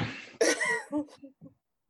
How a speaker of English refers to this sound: I'm sorry. I have sinus problems, so I'm like coughing phlegm up.